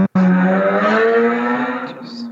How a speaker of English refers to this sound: There he is revving away. It's the Undertaker.